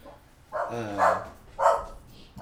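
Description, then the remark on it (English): A dog barks three times in an irregular rhythm, each bark short, with a quiet background between them and no talking. “Whose dog is that?”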